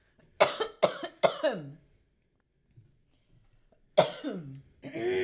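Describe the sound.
Three sharp coughs in quick succession, a few seconds of quiet, then one more harsh cough followed by a brief voice or throat sound, as a person coughs to clear an irritated throat.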